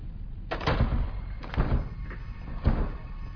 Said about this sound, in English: you've broken the door.